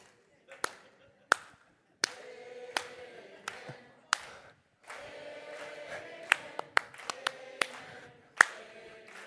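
Sharp, crisp hand claps from an audience clapping along in rhythm ring out in a loose, steady beat, over a dozen in a row, with voices carrying on underneath between them.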